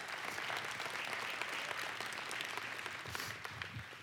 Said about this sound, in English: Y'all give her a hand clap.